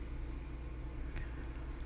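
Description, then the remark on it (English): The engine of a tow vehicle being driven slowly runs steadily, a continuous low rumbling drone with an even hum and no change in loudness throughout. No voices are heard. “I'm driving slowly behind in the tow vehicle. The engine is in front of me.”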